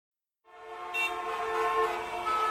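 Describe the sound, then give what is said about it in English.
After a brief silence, a loud, sustained blare of honking horns rises over a steady wash of traffic noise, the layered horn tones holding on continuously without any voices. “The traffic!”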